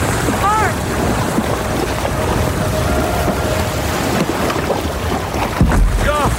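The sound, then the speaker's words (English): Loud, steady surf and wind roar around a small boat being paddled hard through waves toward a beach in the dark, with a dull thump near the end as the boat hits something, and brief shouted voices. “I just hit something. What is it? I can't see.”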